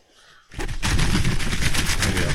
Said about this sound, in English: dipping his hand into the hat and shuffling bits of paper around. Oh boy, this is going to look like a fix.